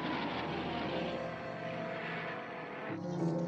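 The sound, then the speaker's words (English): A propeller airplane engine drones steadily and loudly throughout as the pilots in a film scene close in on Kong, a dense continuous roar whose tone shifts slightly near the end as if the plane banks or passes. “Now we cut back to the pilots, which sets up a model plane's fatal confrontation with the model Kong.”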